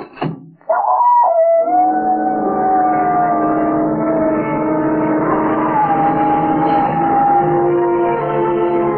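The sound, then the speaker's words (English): A dog howls loudly, one long, sustained, wavering howl that carries on for nearly the whole stretch after a short burst of noise at the start. No one speaks. “Why don't you complain to the neighbors about that dog?”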